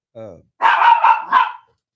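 A dog named Scrappy gives a short high whine, then lets out three quick, loud barks in a rapid burst, with nothing else audible around them.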